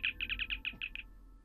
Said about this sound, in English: And as you as you're doing that, you get a little chirp on your communicator.